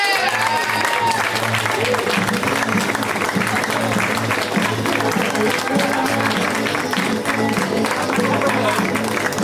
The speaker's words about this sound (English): A round of applause for Stephen Brody Stevens.